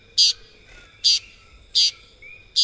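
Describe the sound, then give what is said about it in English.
A Puerto Rican tody, a tiny green bird, calls four times, short buzzy high-pitched notes repeated at a steady, even pace, clear against a quiet background with no talking. “The Puerto Rican toady is a tiny green bird found only in Puerto Rico, where the species is called San Pedrito.”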